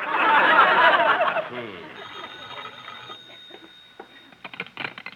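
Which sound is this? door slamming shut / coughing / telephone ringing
telephone ringing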